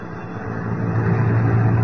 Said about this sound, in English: It is late afternoon of the following day. Lois and Jimmy are riding atop a London bus. Listen.